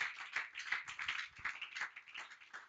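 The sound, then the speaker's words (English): An audience claps hands together in a dense, steady patter of overlapping claps during a sermon, as a clap offering to the Lord, with no one speaking. “Now, if I'm teaching you, can you clap your hands as well?”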